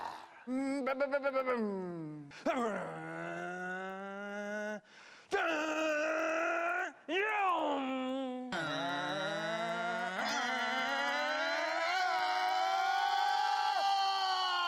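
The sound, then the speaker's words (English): Someone vocally imitates a NASCAR race car engine, as Cale Yarborough was known to do: several loud revving bursts with sliding pitch, building into a long, sustained droning whine that slowly climbs, with no other sounds. “I wanna hear your engine noises.”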